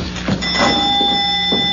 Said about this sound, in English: Yeah, the bell. The doorbell. It's the same.